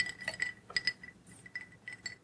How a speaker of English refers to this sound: I use the ice clinking as like the music in between. Clink, clink, clink, clink, clink.